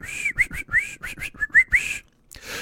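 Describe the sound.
A person whistles a quick, chirpy birdlike call: a run of short, bright rising notes in an uneven rhythm, fairly loud, ending in a brief pause and a soft breath.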